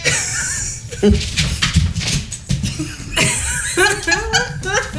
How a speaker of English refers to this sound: We may or may not have commandeered a 125-pound dog. Yeah, there's a big dog here.